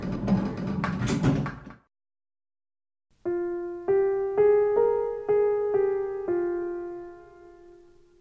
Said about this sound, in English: Maria's hand, which was inside the elevator, is slowly pulled away and the doors close.